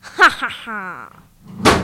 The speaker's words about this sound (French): Mais qu'est-ce qui t'arrive, … ? T'es tombé de ta chaise.